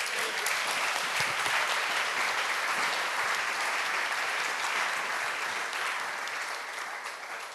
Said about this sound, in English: Donc si quelqu'un est zélé, so if somebody is zealous, applaudissez pour le pasteur.